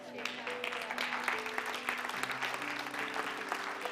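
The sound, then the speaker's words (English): An audience at a church sermon claps steadily throughout, a dense, even patter of many hands, while sustained organ-like chords hold underneath and a few voices call out faintly. “Because I really want you to clap for me?”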